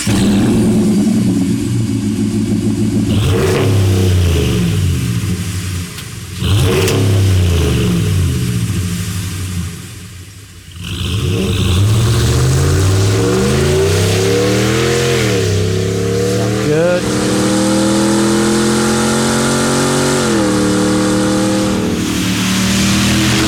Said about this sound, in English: All right, Holman, and here's the identical truck with the Borla Attack exhaust.